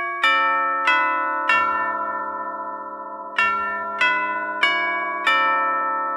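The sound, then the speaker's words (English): Six clear, ringing chime strikes in two groups of three, like a doorbell ding-dong, each tone bright and sustained as it overlaps the next. No one speaks. “Now, normally you think of chimes as being a doorbell type thing. You know, you come to a front door and ding dong.”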